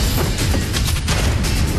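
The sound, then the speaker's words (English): Fireworks boom and burst in a dense, loud barrage in the film Attack the Block, overlapping cracks and rumbling thuds packed together with no pause, continuous throughout. “Lovely fireworks.”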